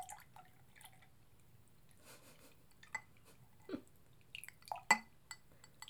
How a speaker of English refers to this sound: I'm pouring us more sangria. ASMR.